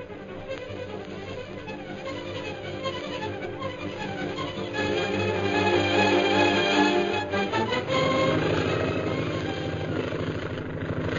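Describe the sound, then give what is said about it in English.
A propeller plane's engine, piloted by Derek Bluger, drones steadily as it roars in from the hill, growing louder and rougher, then shifts pitch as the plane circles for a landing. No voices. “A few hours later, the plane piloted by Derek Bluger roars in from the hill.”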